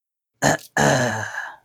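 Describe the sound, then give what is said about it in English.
Someone clears their throat twice, loudly: a short, harsh rasp, then a pause, then a longer, rough, guttural rumble that trails off. No talking. “All right, let's clear my throat over and over again.”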